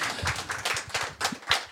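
An audience breaks into applause, a dense patter of many hands clapping at once, steady and fairly loud for a couple of seconds, with no one speaking over it.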